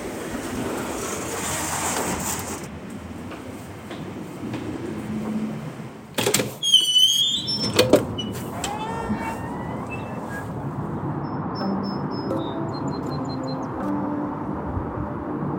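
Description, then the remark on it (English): A steady mechanical rumble from an incline railway car slowing as it pulls into the upper station, broken midway by a burst of high metallic squeals and clunks, then a quieter hum with faint high bird chirps. “And now we're slowly pulling into the upper station. So it's like parking very securely.”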